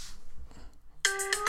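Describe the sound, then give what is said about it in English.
After a second of low, muffled background rumble, an iPhone alarm ringtone starts loudly, its bright, tonal notes repeating in quick rhythmic pulses. “You know the Apple alarm.”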